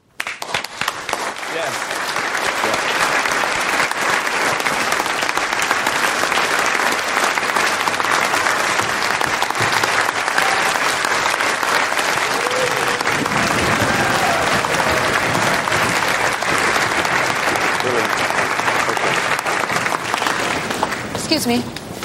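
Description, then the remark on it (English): A large audience applauds a concerto that has just been played, steadily for about twenty seconds, a dense, even wash of clapping that starts abruptly and holds at a loud, constant level before cutting off. “And this time we will record it and we will applaud it.”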